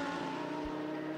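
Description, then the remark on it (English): The engine of the number 793 Lamborghini race car roars loudly and steadily as the car continues on its way, its buzzing harmonic drone holding an even pitch through the whole brief moment, with no voices. “793, the Lamborghini, continues on its way.”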